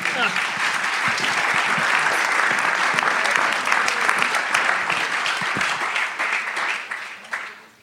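Steady audience applause with dense, crackling clapping that holds at a fairly loud level for several seconds before tapering off and fading out at the end.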